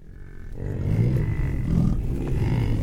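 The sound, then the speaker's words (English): An American bison, held in a corral after the annual roundup at Antelope Island State Park in Utah, bellows with a deep, low, rumbling roar that swells after a brief quieter start and holds loud and sustained, with no talking. “We leave you this week in the company of wild bison.”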